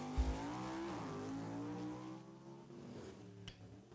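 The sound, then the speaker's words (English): A race car's engine revs hard and climbs in pitch as it launches at a starting line and fails to get off the line well, loud, with a brief sharp click near the end and no voices. “Oh, that car didn't get off the line.”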